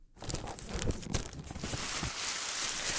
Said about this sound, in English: Oh, why do people waste all this tissue paper? To make it look fancy?